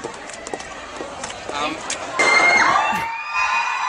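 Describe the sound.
A large crowd at a gig in a scouts hall in Horsham cheers, swelling suddenly partway through as a Mexican wave passes through and holding at a loud, roaring level, with high shouts and whoops rising above the wash of voices.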